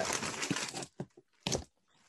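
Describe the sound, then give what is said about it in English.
Rustling wrapping paper crinkles in a dense burst for nearly a second as a gift is opened, then breaks into a few sharp, separate crackles and tears before fading to near quiet. “What's in the wrapping paper? Oh, yours is in a box, so yeah, I'm having a little tough time with this one.”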